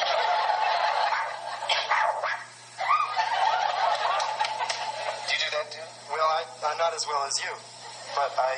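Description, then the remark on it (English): Someone mimics bird calls, a run of warbling, gobble-like vocal squawks that carry on for several seconds with brief pauses between bursts. “So I do the same thing with the birds.”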